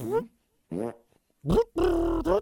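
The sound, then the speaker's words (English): A string of five loud fart noises: short rasping, pitch-bending blasts with brief gaps between them, the longest one near the end, and no talking. “Wow, that was pretty impressive from your ass. It's just a fart.”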